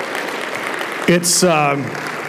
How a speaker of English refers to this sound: Guys, give them a hand again for coming up and sharing.